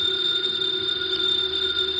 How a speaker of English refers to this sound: It's the house phone